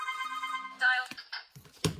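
A mobile phone rings with a bright, buzzy electronic tone that shifts through a few short notes, followed by a couple of sharp taps or clicks. No one speaks.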